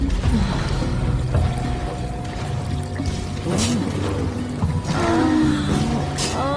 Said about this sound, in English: I don't like the water flow changing with this scene.